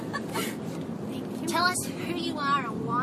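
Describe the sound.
A steady, low engine rumble fills the inside of a moving bus, constant throughout, with indistinct voices briefly rising over the drone.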